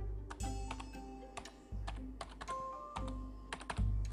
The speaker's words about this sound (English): Okay, just type in S-U-D-O. Space, P-U-R-G-E. And hit return on the keyboard.